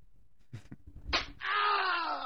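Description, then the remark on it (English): A slap-to-the-face sound effect: a quick smack rings out after a soft thump, then a loud, drawn-out pained cry follows and trails off, clear with no talking. “with the column racking up more pub than a Will Smith slap to the face”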